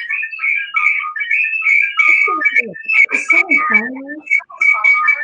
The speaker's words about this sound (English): That sounds like whistling.